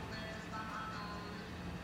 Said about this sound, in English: Oh my God, that scared the shit out of me. We are above ground and on a street. And so, like. We forget that cars are going to go by and just be bumping shit. Yeah, because I thought someone was in the space with us.